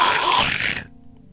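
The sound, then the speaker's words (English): A person doing Foley for a trailer imitates a monkey grunt, voicing King Kong, with one loud, harsh, breathy burst lasting under a second, raspy and noisy in tone, before it cuts off into near silence. “I monkey, I go...”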